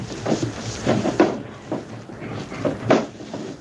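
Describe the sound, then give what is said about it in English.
Drawers in the bunk of a cabin slide and bump, with a series of irregular wooden knocks and scrapes as someone searches through them for a missing jewel box, no voices. “Suppose you open your luggage, Mr. Smith, while we try the drawers in the bunk.”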